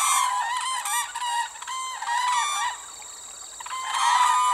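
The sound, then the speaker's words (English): Whooping cranes call loudly and nearly continuously, their harsh, bugling notes overlapping as if several birds are trumpeting together, briefly easing off before swelling again. Their summer home is Wood Buffalo National Park in northern Canada, where Alberta meets the Northwest Territories. “And as … tells us, it's the summer home for America's tallest bird.”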